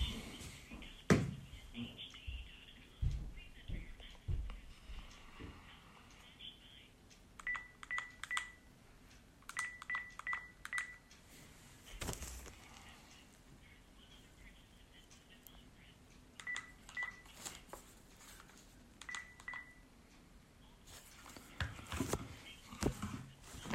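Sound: telephone dialing tones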